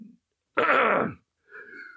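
A single hard, forceful cough bursts out, rough and noisy for about half a second, with a soft bit of voice just before and after it.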